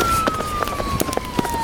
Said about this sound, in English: Please, everyone, the sirens are getting closer.